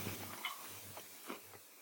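Someone chews a crunchy foam toffee candy with a crunchy, wafery caramel-toffee center, producing a few soft, irregular crunches over a low steady hum, with no talking.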